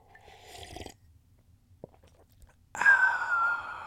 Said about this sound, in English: And over the years, as I'd go back and listen to bits and pieces of those recordings, on them occasionally you would hear me take a sip from a drink, much like this.